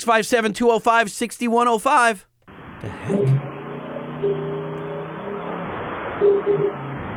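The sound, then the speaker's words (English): An engine revving hard on a dyno run, first in a few sharp, rising bursts, then a sustained muffled drone that wavers in pitch, sounding thin as if played down a phone line. “That was a dyno run.”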